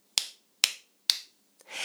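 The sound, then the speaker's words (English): Three sharp, crisp hand claps land at an even, steady pace, fairly loud, followed by a brief hissing, rushing noise at the very end. The hands are clapped to make music for a song. “We're going to be using our hands to clap.”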